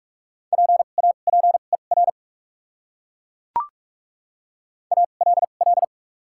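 Rapid Morse code tones sending common English words at 45 words per minute with doubled character spacing, a single steady mid-pitched beep keyed in quick dots and dashes, sent as two short bursts separated by a silent gap broken only by a brief click.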